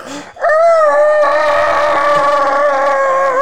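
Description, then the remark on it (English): A voice imitates a TIE fighter's screech: one loud, sustained, buzzing wail held steady for about three seconds after a brief lead-in, with rich harmonics and a slight waver. “That was, not a bad TIE fighter.”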